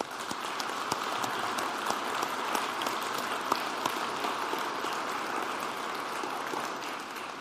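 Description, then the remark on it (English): An audience at the Y Church applauds a church leader with steady, dense clapping that holds at an even loudness for several seconds, the many overlapping claps blending into a continuous patter with no voices on top. “maybe even invite us to applaud her.”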